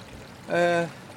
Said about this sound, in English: We're just sitting by a little waterfall on this Canisp River.